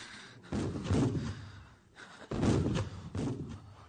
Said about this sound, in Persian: این توپ ها برای مرگ ماست که شلیک می شود.